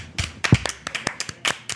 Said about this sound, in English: So, round of applause.